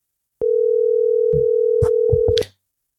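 A telephone ringback tone during an outgoing call sounds once, a steady electronic hum lasting about two seconds before cutting off, with a few soft knocks and clicks over it. No one speaks.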